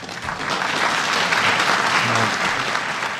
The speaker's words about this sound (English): For the first time that day, the audience burst into applause. It was like, oh, goodness.